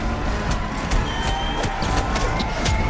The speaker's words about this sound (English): When the hoodlums are knocked out, Batman rushes Robin out of the circus. All the while, the crowd cheers